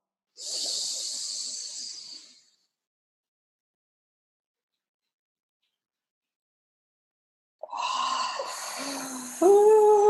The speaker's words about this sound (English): Okay. Let's all breathe together and hold it at the top.